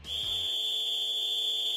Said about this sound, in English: Gladiator, ready. You will go on my first whistle. Peter Hook, you will go on my second whistle.